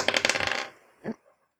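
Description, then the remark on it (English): Dice rolled across a hard surface to hit in a tabletop role-playing game, coming up 17: a quick, bright rattle of clicks for about half a second, a brief pause, then one soft knock as they come to rest. No one speaks. “Okay, I want to roll to hit.”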